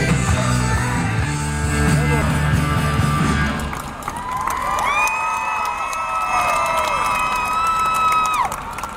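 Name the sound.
crowd cheering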